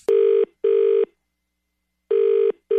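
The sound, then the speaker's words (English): Telephone dialing tones for a Jubal phone tap prank call on Moving 92.5 sound in loud, steady pulses, two short bursts, a pause, then two more, clear and alone with no voices. “It's another Jubal phone tap.”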